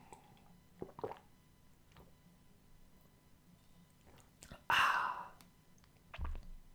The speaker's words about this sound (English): So what's it like to listen to a man drink water? Can that be regarded as entertainment?